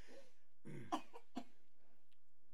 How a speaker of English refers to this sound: About coughing.